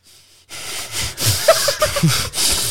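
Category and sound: vocal imitation, voice imitating heavy breathing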